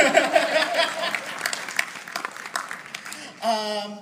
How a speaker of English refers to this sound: Hey, yay, applause. Woo-hoo.